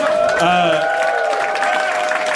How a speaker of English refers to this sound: Everything sounds horrible when it's followed by applause like that.